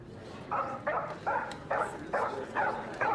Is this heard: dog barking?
yes